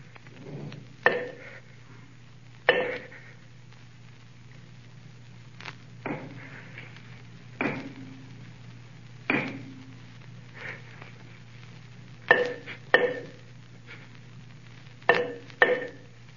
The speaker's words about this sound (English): with the earthenware jug, I knocked against the wall where the sound came.